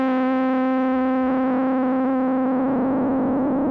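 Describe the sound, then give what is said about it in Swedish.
A steady, buzzy synthesizer tone holds one note while noise modulates its pitch, so the pitch jitters randomly. This gives a fluttery, unstable wobble that grows rougher toward the end. No voices are heard. “Att man kan använda noiset som modulationskälla är mer eller mindre standard.”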